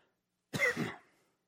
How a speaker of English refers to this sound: When you know, I wouldn't cough the whole morning until I stand up.